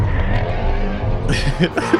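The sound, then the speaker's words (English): A Ford Mustang GT350R race car engine, driven by a professional Ford driver, roars loudly and continuously, its deep rumble rising into a harsher, higher snarl near the end as the car accelerates. “It sounds like the devil made the motor. It's the most evil sounding car.”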